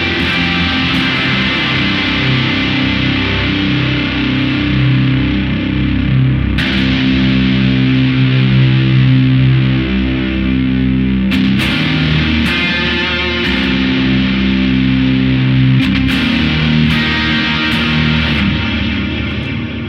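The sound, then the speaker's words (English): Overdriven electric guitar plays sustained, chorded phrases drenched in reverb and echo, with the halo and LRC black hole effects on and echoes added, tone adjusted to cut through; notes ring and blur into each other at a steady, loud level, no voices. “Did a little adjusting just to make it cut through while having the halo and the LRC black hole on. We're going to add the echoes.”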